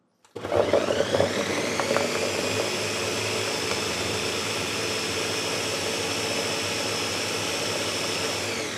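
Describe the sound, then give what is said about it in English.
A blender blending about 2 cups of frozen pineapple whirs to life abruptly and runs at a loud, steady high-pitched roar, with some rattling chunks early on as the frozen pineapple gets churned, then smooths into a constant motor drone. “I'm going to blend it up now.”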